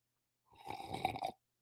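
A single loud, drawn-out slurp of coffee lasting about a second, wet and gurgling with an airy hiss, swelling slightly before cutting off. No one speaks.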